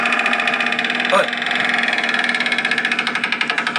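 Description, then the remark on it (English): A motorbike engine drones loudly throughout, its buzzy rhythmic pulses quickening toward the end, with a brief bump from a door partway through and no one speaking. “Oh my god, it's a door and a motorbike.”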